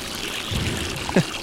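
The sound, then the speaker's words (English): Holy water pours and trickles out onto a carpeted floor in a short, steady splash, with a brief louder gush near the end. There is no talking. “he releases all the holy water right onto the carpet, right onto the floor.”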